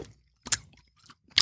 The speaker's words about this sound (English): No more of the chewing intentionally into the mic. It's ASMR.